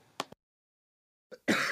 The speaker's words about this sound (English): Well, that's a good way of starting. I press record and you cough well, down the microphone. Still got that cough, haven't I?